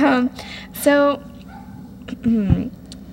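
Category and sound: animal, small dog barking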